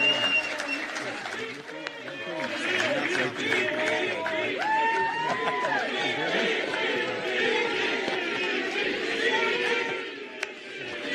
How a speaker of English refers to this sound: Here's Donald Trump talking to the crowd, and then Vivek getting a huge applause from everyone.